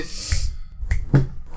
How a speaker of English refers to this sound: I'm lucky if I can snap. And like you fucking always snap. Like, that's fucking crazy. It's so loud.